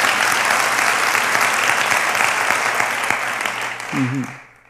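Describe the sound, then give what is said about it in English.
An audience applauds in a dense, steady wash of clapping that holds for several seconds, with a brief voice calling out near the end before the applause fades away. “I just want to applaud somebody in this room.”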